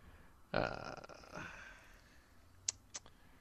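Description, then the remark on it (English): A loud fart erupts and rasps for about a second before trailing off, followed by two quick sharp clicks a moment later. No one speaks. “Obviously, it went with the fart.”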